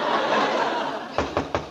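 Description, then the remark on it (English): Four sharp, fairly loud knocks on a door, announcing Miss Pigeon's arrival, come in quick succession near the end, rapping over a steady background of murmuring, laughter-like crowd noise. “Now you answer the door, and Mrs.”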